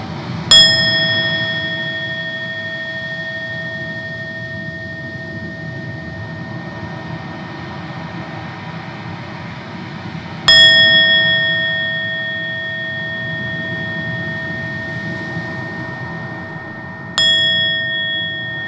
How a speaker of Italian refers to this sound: Suonerò la campana per tre volte, dopodiché iniziamo con la meditazione.